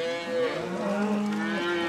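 A herd of cows moo at once, long overlapping lowing calls that rise and fall together, fairly loud, with no talking.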